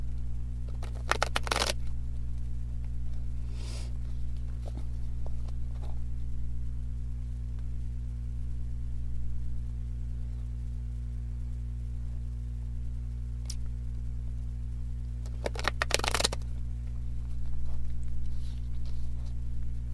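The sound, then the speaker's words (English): A deck of sticky guidance cards being shuffled in two brief, crisp riffling bursts, near the start and again near the end, separated by a long quiet stretch over a steady low electrical hum. “Sticky cards. Hard to shuffle.”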